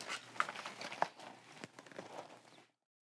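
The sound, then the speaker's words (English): Someone crunches cereal while chewing during a cereal taste test: a steady, crackly munching with a few sharper, louder crunches, and no talking, before it stops abruptly. “Nothing says, I'm sure people are listening with their headphones, and all they hear is crunching.”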